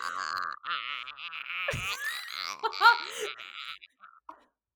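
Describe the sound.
A person imitates dolphin sounds with high, squeaky chirps and warbling whistles, rising and falling in quick bursts, with a low thump partway through, fading at the end.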